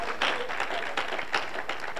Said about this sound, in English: Clap your hands if you believe it. Hallelujah.